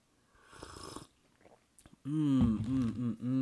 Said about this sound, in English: But all right, let's jump into it. I need another sip of the tea. Hold up.